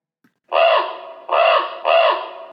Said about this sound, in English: You hear flapping of wings just above your head, and you notice a raven is flying just above you from side to side as if taunting you.